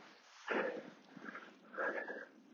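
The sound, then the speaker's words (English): A dog in a field sniffs right up against the microphone in three loud, breathy bursts, with short pauses between them and no one speaking. “The dog just trying to run into my face there.”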